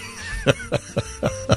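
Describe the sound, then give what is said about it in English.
A person coughs and clears their throat in a quick series of five short, rough bursts, evenly spaced, with no talking, in a radio studio just before going on air. “Was that me coughing or just me going, Both.”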